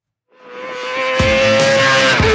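High-revving racing motorcycle engines whine in, swelling quickly from quiet to a loud, sustained roar as they speed past at over 100 miles per hour on a road course track in Florida, with no voices.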